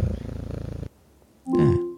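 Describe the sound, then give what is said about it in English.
A cat purr played by a voice assistant's premium skill sounds as a steady, rhythmic low rumble that cuts off abruptly after about a second; after a short silence, the device gives a brief electronic beep. “That is quite soothing. I like purring cats.”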